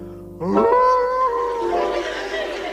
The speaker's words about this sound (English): And a lonely wolf is howling at the moon.